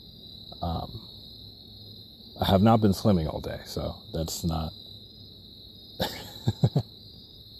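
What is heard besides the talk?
crickets chirping outdoors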